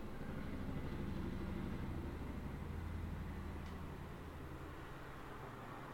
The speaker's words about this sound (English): Just waiting for this helicopter to fly on past.